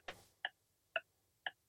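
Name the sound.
quiz countdown clock ticking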